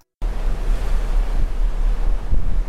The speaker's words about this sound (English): So you can probably hear the sea there and a little bit of wind. We're on the crossing from Southampton to New York on the Queen Mary 2.